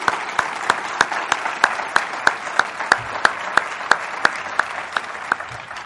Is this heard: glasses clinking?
no